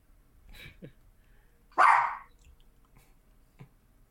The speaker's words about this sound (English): Sorry, there's a very loud dog barking in the background,